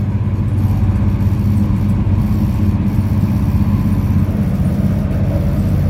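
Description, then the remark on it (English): A loud, steady engine drone fills the interior of an old, refurbished connecting intercity train to Trieste, a deep rumbling hum with a dense, throbbing low end that never lets up, with no voices present. “Now on the connecting intercity train to Trieste, it's like sitting in a twin prop turbo. Listen to that.”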